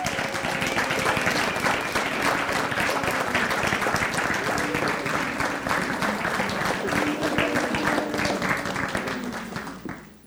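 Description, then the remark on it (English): Sustained applause from a large audience for everyone on stage at the end of a story performance with music, a dense steady wash of many hands clapping at once, holding level for about ten seconds before tapering off at the end. “Please give a round of applause for everyone up here.”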